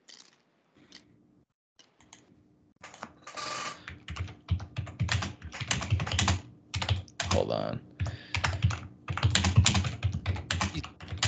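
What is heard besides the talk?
loud computer keyboard typing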